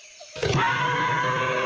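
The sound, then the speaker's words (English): A sudden, loud screech from a flock of pterodactyls flying above a jungle bursts in after a brief quiet moment, then holds as a harsh, shrill cry that rings out steadily overhead. “A screech suddenly echoed overhead.”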